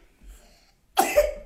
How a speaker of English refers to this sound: This thing, you hear this? You hear this coughing? That's what's happening at the Hollis house right now. That's why Rachel Hollis is not going to be on this show this morning. Because she has been struck with the dang cedar fever.